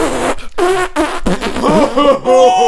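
sound effect, fart sound effect

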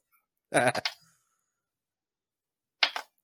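dice being rolled

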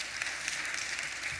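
crowd, audience clapping

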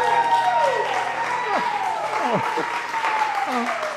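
crowd, audience applause

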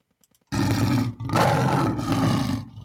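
animal, lion roaring

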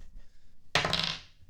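dice being rolled

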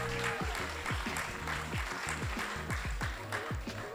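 crowd, audience clapping

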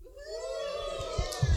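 crowd, audience shouting and cheering

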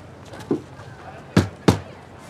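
impact, knocking on a door

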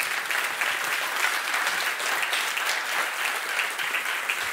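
crowd, audience hand clapping

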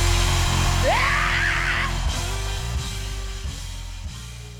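crowd, audience screaming and shouting

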